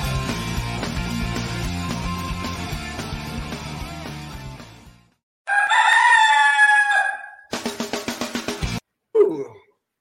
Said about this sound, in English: I think we do that on Fridays. We have that ad. For some reason, the rooster wants to crow. Twice on Friday episodes.